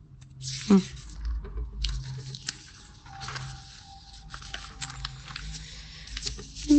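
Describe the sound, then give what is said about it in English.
Pages of paper notes being turned, a run of soft crinkly rustles and flicks over several seconds, with a quiet voice murmuring faintly in the background. “Sorry, I'm just turning pages”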